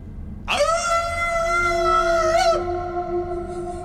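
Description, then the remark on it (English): A person howls like a wolf: one sustained, wavering cry that rises sharply, holds for about two seconds, then drops to a fainter lingering tone. Loud, with no talking. “They say, now howl like a wolf. And so we howl like this.”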